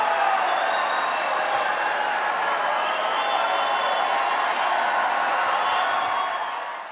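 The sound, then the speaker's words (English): A large crowd at a Donald Trump event gives a long standing ovation, one unbroken wash of clapping that holds a steady, loud level for the full seven seconds before starting to ease off at the very end. “That is a long, long, long round of applause and standing ovation.”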